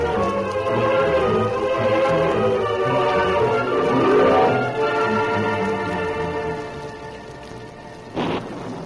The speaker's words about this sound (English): Night had fallen. The sky had clouded over, and a wind-driven rain was falling